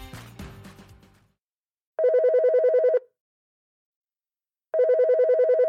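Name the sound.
telephone ringing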